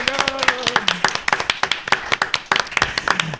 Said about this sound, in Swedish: Det ser ut som att stora applåd till Visby där de spelar hem där.